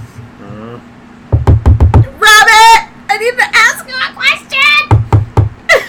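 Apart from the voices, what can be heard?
knocking on a door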